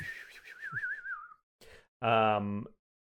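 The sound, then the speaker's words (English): Someone whistles a wavering, slowly falling tone, imitating a javelin flying across a crevasse, then a short breathy burst and a brief, loud vocal sound. “And a, let's see, a javelin whistles across the crevasse at you. Oh, I like whistling.”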